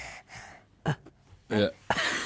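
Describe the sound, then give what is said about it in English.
A small child who has just crawled into the room breathes heavily, with a run of loud, breathy huffs and gasps, some slightly voiced, separated by brief pauses. “So my little one's just walked in the room. Well, crawled in the room. Hello. Say hello. That's a bit heavy breathing.”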